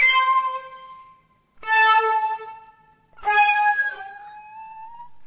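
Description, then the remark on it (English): Three sustained, breathy tones that bend in pitch like a cat's meow but carry a smooth, flute-like timbre, a synthesized blend of flute and cat meow made with NSynth SoundMaker, each lasting over a second, heard alone. “So you can take the sound of a flute, you can take the sound of a cat, and put the two things together, and you get like this meowing cat flute.”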